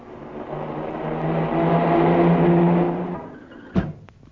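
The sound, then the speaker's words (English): A car engine speeds by, its steady hum swelling loud and then dropping away, followed by a single sharp thump near the end as the car knocks down Willy Weasel. No one speaks. “Willy has been knocked down by a car!”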